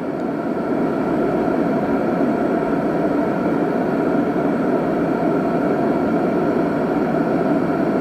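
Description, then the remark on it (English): Steady brown noise plays without a break, a deep, even rushing hiss like a plane cabin's drone, holding the same loudness from start to finish with no voices. “Brown noise is a sub-frequency of plane.”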